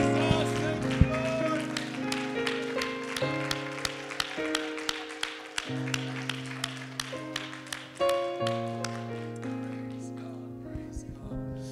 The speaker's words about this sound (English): Come on, one more time. Let's clap our hands. Let's shout unto God.